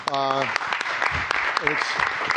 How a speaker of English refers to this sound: And I think that applause is well deserved because, honestly, you I think are my favorite aviation podcast that's not mine. Thank you. And it was gratifying to see people other than those with Airspeed hats clapping.